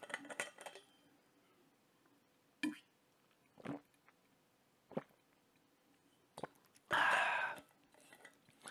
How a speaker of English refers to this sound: So yeah, I'm gonna get a sip of water.